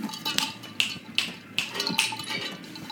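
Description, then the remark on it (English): A steady series of sharp knocks on a door, about five or six evenly spaced raps at a brisk pace, moderately loud, with no voices over them. “Knock at the door.”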